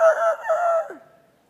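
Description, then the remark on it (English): A single rooster crow rings out loud, a strained, harmonic call held for about a second before dropping in pitch and trailing off, with no voices around it. “I don't know if there's chickens in heaven, But if there is, Peter wakes up every day to...”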